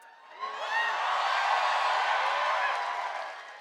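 audience cheering

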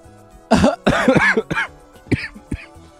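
coughing

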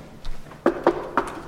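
knock

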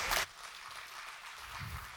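audience applause

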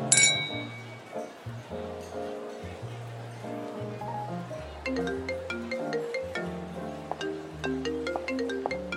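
glasses clinking

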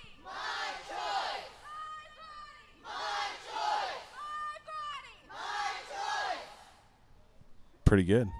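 rally crowd chanting

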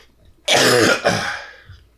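coughing and throat clearing

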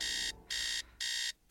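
alarm clock ringing

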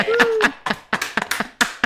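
one person clapping

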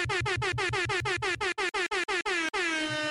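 air horn blast

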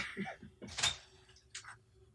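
door opening

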